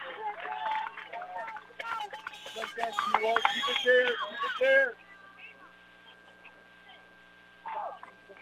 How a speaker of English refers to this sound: I'm not sure who the heck's yelling out in left field, but he's yelling. You can hear him. Not sure words of encouragement or what.